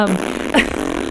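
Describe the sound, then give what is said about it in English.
A short, buzzy fart sound rises into a brief squeaky sweep, fairly loud, over a faint steady background with no talking. “But are we over talking about farting? Because farting was fun.”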